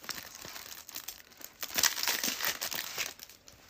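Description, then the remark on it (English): Continuous crinkling of the thin plastic wrapper of a trading card pack being pulled open by hand, with irregular crackly bursts and a few sharper tearing snaps, no voices present. “Do you need the scissors to open it? No, I just opened them inside right here.”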